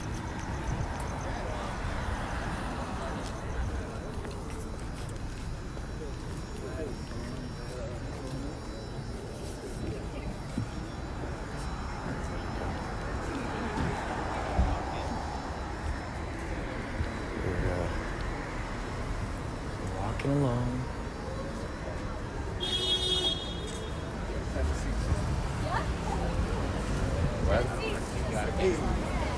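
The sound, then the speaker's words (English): Steady city street ambience in Los Angeles, with a low rumble of cars pulling in and out and passing traffic, scattered footsteps and a murmur of voices, all at a moderate, continuous level. “Okay, we have a whole situation here with cars pulling out, cars pulling in. You never know what's going to happen. Walking through the streets of Los Angeles.”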